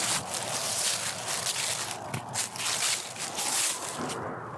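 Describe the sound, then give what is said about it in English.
Footsteps crunch through dry, decaying vegetation on an untrodden path in an undisturbed forest, the nameless wood, in a steady walking rhythm, each step a bright, crackly rustle over a continuous hiss of leaf litter, with no voices. “The ground crunches underneath every step I take, reminding me I may be the first carving this path through decaying vegetation.”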